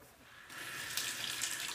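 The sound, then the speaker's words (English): A tap runs in a steady hiss that swells brighter after a brief start, with the stream's splash shifting slightly as a toothbrush is held under the flow to wet it before brushing teeth. “So let's just get toothbrush wet, and then I use like the Crest mint toothpaste, and it's a really good toothpaste.”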